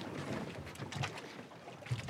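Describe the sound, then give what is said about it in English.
A steady wash of engine rumble and water noise from a work boat underway on a bay, with wind buffeting and a few soft knocks, no voices, fairly quiet and continuous throughout. “It's kind of a work boat, you know, so there's cool. Not a whole lot of places to sit”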